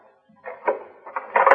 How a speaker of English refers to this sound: This seems to be the service entrance to the apartment. It may be open. Try the door very quietly.